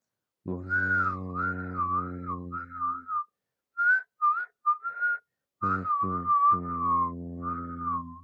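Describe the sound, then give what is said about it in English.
Someone whistles a wavering tune, with a low buzzing hum underneath during the longer opening and closing phrases, and a few short, separate whistled notes in between. “I finally figured out how to whistle again.”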